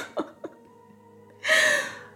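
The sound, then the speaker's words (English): Two quick, catching breaths are followed by one loud, explosive sneeze, a bright, hissing burst lasting about half a second against a low steady hum. “God bless you.”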